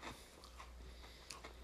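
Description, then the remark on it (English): Someone chews a crunchy snack, with a series of crisp, irregular crunches and bites spread across a couple of seconds at low volume, no talking. “Try these ones, but they're kind of crunchy.”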